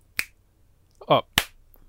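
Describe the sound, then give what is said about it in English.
Two crisp finger snaps, well apart, with a brief voiced sound between them against a quiet background. “Can you also snap real quick?”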